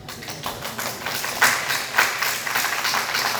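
An audience applauds the speaker's wife on their 29th wedding anniversary in a steady, dense wash of clapping, with a few sharper claps standing out around the middle, no voices over it.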